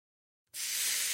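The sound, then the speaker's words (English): An Applebee's sizzling skillet bursts into sound after a moment of silence, then holds a loud, steady, bright hiss with a faint crackle underneath. There are no voices. “If you can hear that sizzle, it probably means one thing. You're thinking about Applebee's sizzling skillets.”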